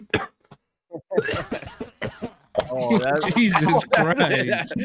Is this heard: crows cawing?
no